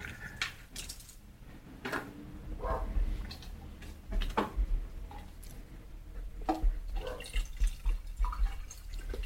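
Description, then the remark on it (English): Water being poured into a water bottle as it is refilled, with irregular drips, splashes and small clinks over a low background rumble, and no talking. “Well, I'm going to use this opportunity to refill my water and give the listeners what they crave.”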